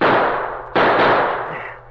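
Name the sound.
gunshot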